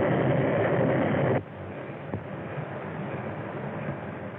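A train rolls along the rails with a steady, dense rumble that is loud at first, then abruptly drops to a softer, continuous clatter with one brief knock partway through.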